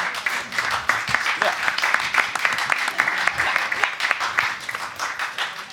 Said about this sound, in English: So, everyone... No, clap. All right.